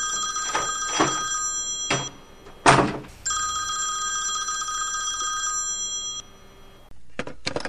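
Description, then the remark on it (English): An old-style telephone bell rings loudly in two long bursts separated by a short pause, with a few sharp clicks and knocks around the rings. No one speaks. “Hey, can you get that phone real quick?”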